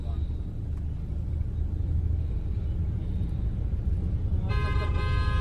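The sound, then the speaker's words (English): Car horns honk over steady, rumbling street traffic, heard while driving down a road, with one long, loud blast near the end that stands out sharply above the low engine drone. “By the way, you don't need brakes, you need horns.”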